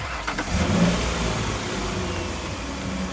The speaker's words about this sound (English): Maybe Dolvert's muffler and engine block ain't lemons after all. Oh, don't drive away.